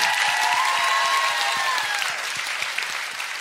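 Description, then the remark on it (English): A crowd claps steadily in dense, continuous applause, loud, with a few faint whistles or cheers rising above it before the clapping eases slightly toward the end. “Round of applause for this action.”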